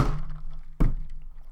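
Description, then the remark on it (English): Two dull, hollow thunks of plastic solo cups knocked together in a toast, fairly loud, spaced under a second apart, with no voices. The second tap is sharper than the first. “So I guess we can't cheers with solo cups. Let's try.”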